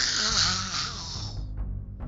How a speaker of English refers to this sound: The roar echoed in the walls of the well and sounded even louder.